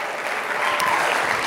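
Steady, dense audience applause for the president, a continuous wash of many hands clapping at an even, fairly loud level without any clear individual voices.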